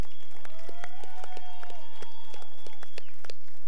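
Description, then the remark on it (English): A crowd at San Diego Padres FanFest 2016 applauds loudly with dense, irregular clapping for Padres legends Dave Winfield and Trevor Hoffman, while high, sustained whistles and cheers rise over it for a few seconds. “As you can hear, we have raucous applause.”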